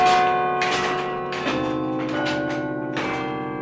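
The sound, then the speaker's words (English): Church bells ring out in a run of overlapping strikes, each one clanging in every half second or so while the deep, humming tones of earlier strokes keep sustaining beneath. No voices. “Obviously, I think bells are important.”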